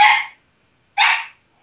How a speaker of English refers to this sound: Just the barking dog one.